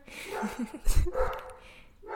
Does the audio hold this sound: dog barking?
yes